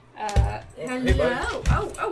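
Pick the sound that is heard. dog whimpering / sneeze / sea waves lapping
dog whimpering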